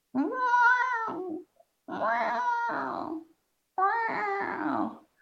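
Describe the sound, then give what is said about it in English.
A person imitates a cat mewing and growling: three drawn-out, mewing yowls in a row, each sliding into a low, rough growl. The calls are fairly loud, with short pauses between them. “Growling like a house cat lion over its prey.”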